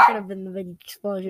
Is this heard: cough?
no